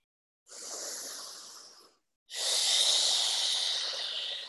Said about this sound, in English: And as you deepen your breath, you can start breathing in through the nose and out through the mouth. And maybe making some sound with your breathing, if it feels good.